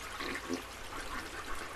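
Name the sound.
toilet flushing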